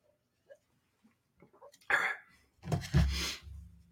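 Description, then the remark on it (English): Someone takes a sip of water: a few soft, scattered mouth clicks and slurps, then louder breathy bursts as they swallow and exhale, with no talking. “I'm gonna a little sip of water here.”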